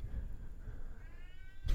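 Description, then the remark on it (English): A cat lets out a drawn-out, wavering meow that rises into a yowl, fairly quiet over a low rumbling background, cut off by a brief thump at the end. “We have to lock her in the basement at night because she comes up and howls outside our door all night, wakes the kids up, or every night.”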